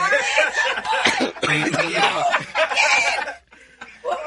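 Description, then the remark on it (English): Several people cough in overlapping, raspy bursts after smoking cannabis, fairly loud, mixed with snickering laughter, with a brief pause near the end before another cough breaks in. “Is the cough committee done commenting here?”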